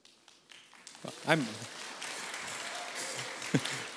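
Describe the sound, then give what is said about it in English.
An audience claps steadily, a dense crackling wash of applause that holds at an even level throughout, with a couple of brief voiced whoops rising above it. The audience is clapping to welcome back two Princeton campus pastors returning from a holiday. “and so we welcome them back, and I know you're clapping in the room for them right now.”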